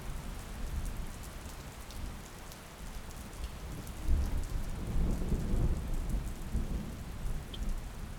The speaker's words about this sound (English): You will notice that the rain outside the cave is settling down. It is becoming lighter and lighter.